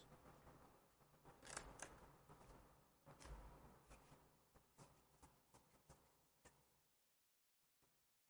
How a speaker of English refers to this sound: This one's important. He's warming up the dice.